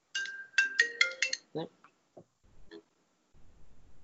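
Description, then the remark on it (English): A FaceTime call ringtone on a phone plays a quick run of bright, chiming electronic notes for about a second and a half, then fades into a few brief, faint murmurs and noises. “Somebody just tried to FaceTime me.”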